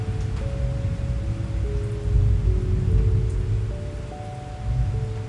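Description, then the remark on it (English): Steady, continuous rainfall during the rainy season hisses with a low rumbling undertone, joined by a few soft, sustained tones. No one speaks. “Because you know you're in the rainy season.”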